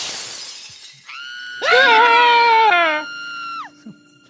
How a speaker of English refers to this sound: screams and throws herself out the window.